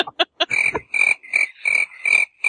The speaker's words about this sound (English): you're right. That was much deserving of the crickets.